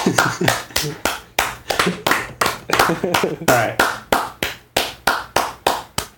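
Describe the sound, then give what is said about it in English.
Hands clapping in a steady, even rhythm, roughly three sharp claps per second, continuing without a break for the whole stretch, as a round of applause for a theme song. “Your hands have stopped clapping.”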